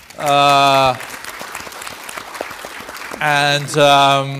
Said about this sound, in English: And let's also send a big thank you to Asia, because 70% of the global growth this year is coming from Asia. I think that needs an applause.